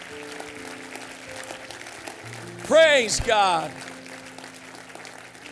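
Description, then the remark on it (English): An audience claps steadily in praise to their Heavenly Father, a soft, continuous patter of many hands, while a man's voice rings out briefly over it in the middle. “Let's clap our hands to our Father, our Heavenly Father.”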